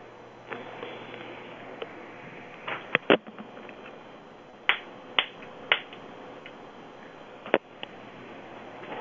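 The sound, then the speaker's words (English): Three sharp hand claps, crisp smacks at uneven intervals, made about 3 feet from a phone set down on a table as a calibration test, over a steady low background hiss with no talking. “Okay, I want you to put the phone down on the table and be 3 feet away from it and clap 3 times.”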